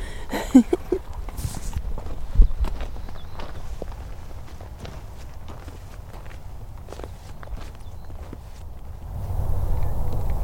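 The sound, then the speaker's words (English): Slow, soft footsteps of a woman carrying a dart gun crunch through grass on a hillside as she approaches horses at a steady unhurried pace, with a couple of louder bumps early on and a low rumble of wind swelling near the end. “Slowly walking around.”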